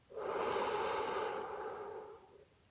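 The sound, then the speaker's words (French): A slow, deep breath is drawn in and then slowly released during a breathing exercise, clearly audible, with a soft airy hiss and no talking. “Imagine une belle forme de cœur en prenant une grande inspiration. Puis, imagine un diamant brillant en expirant lentement.”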